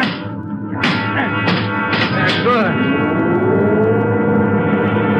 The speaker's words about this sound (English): All right, kick the control lever. Kick it, Ben.